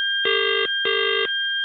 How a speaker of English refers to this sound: What we had there was a bad line.